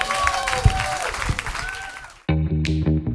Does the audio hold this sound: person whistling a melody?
no